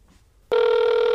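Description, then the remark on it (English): After a moment of near silence, a telephone abruptly starts ringing, a loud, steady electronic tone that continues through to the end. “Come on, man, pick up the fucking phone, bro.”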